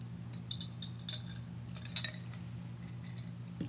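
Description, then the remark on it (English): Someone takes a sip of a drink, with several light, glassy clinks scattered over a steady low hum and no talking. “let me take a little sip.”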